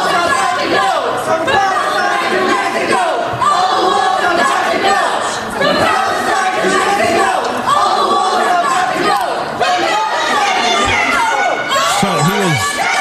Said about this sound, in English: Led by a frantic, screeching young woman, as always. As nearly always. Listen to that. Gets more unhinged as it goes. So he was arguing for Ukraine aid, but they jumped in with the screaming for Palestine.